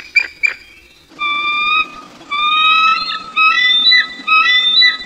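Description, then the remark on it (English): A bald eagle on a tree-lined rocky shore gives two short chirps, then a series of four long, high, whistling squeals that rise slightly and warble, loud and alone over a faint background hiss. “Listen for the loud, vibrant chirps and gull-like squeals of the bald eagle.”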